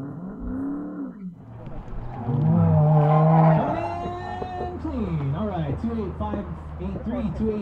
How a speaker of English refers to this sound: I first heard the distinctive sounds of the growling exhausts and screeching tires